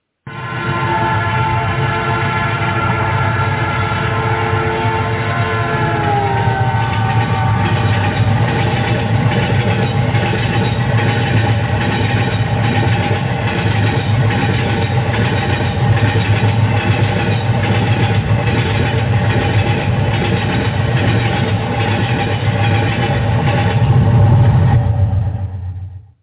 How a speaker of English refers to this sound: And for that time, we hear that train coming.